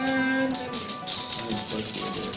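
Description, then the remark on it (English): A dense clattering rattle of many dice shaken and tumbling together, rolled for damage in a tabletop game, loud, in quick irregular bursts over a faint background hum. “Sounds like a lot of dice.”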